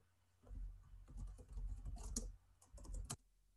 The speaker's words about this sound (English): Next up on Cubby Hole, man typing.